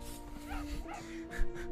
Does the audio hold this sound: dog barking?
yes